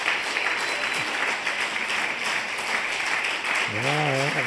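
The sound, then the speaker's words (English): A crowd claps steadily for students who finished their education and are going on to college as they come forward, a dense, continuous patter of many hands, loud and even throughout, with a single voice briefly calling out over the applause near the end. “And as they come, give them a good clap offering, okay?”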